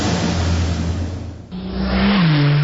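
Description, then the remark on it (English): A speeding car's engine roars loudly, its steady drone briefly dipping before the revs climb again and the pitch rises as the car speeds up. “Hey, slow down, buddy. This ain't Talladega.”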